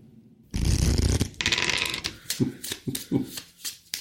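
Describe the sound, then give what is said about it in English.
Loud shuffling of a deck of cards by overhand shuffle: a dense, rapid riffle-like flutter of cards for about a second, then a series of quicker, irregular slaps and flicks as the deck is worked in short bursts. “With the deftness of a Vegas shuffler, Nicole overhand shuffles.”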